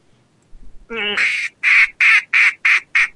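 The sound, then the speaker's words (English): A loud duck gives a short rising call, then a run of six rapid, evenly spaced, raspy quacks in a steady rhythm. “Alright, now that everything got all we're all just running out of steam and listening to the duck.”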